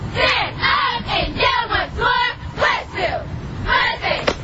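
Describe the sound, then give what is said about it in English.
A cheerleading squad shouts a cheer for Westfield in unison, loud rhythmic bursts of chanting that rise and fall over several seconds, with crowd noise underneath. “Terrible cheer.”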